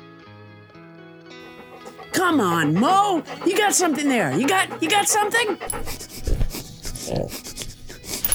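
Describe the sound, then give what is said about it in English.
A person imitates a dog, with loud whiny barks followed by rapid breathy panting, while a voice talks encouragingly over a soft background tone. “You're confusing it with my "I wanna dig for dead bodies" bark, which is much more like this.”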